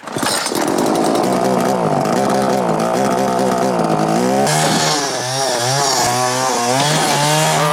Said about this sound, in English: out of the store, and there's a big tree trunk for him to test the chainsaw, and then it cuts to his close-up as he's turning the chainsaw on, and then they go to the wide. And it's clearly not him. You know, it's clearly some chainsaw specialist.